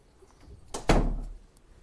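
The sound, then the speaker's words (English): A door is shut after dogs run out, swinging closed with a solid thud, preceded by a brief creak or scrape of movement, then a short low rumble as it settles; moderately loud, no talking. “Let me shut the door here.”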